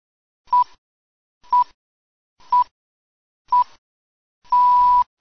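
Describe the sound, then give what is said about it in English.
A countdown of electronic sync beeps for starting a DVD in time with a commentary track, at a steady pitch: four short, evenly spaced beeps one second apart, followed by a longer sustained beep, clear and loud with silence between. “If you would like to watch the episode at the same time as listening to the commentary, please press play on your DVD after the sixth beep.”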